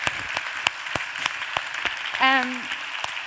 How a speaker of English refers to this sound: Can we give Daniel a huge round of applause?